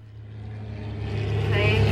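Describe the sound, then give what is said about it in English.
A small propeller plane's engine drones with a steady, low, buzzing hum that swells gradually louder over a couple of seconds as the plane comes in to land at an island; the island's plane service has run since the mid-1970s. “Plane coming in, yeah.”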